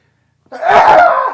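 A man's single high-pitched, stifled sneeze, a short breathy burst that swells and fades after a moment of silence, with no one talking.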